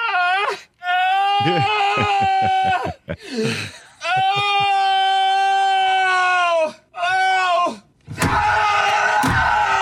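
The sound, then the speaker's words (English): A voice imitates a creaky bathroom door, drawing out long, loud, wavering groans and squeals in several bursts with brief pauses, ending in a rough, noisy blast. “Bathroom door.”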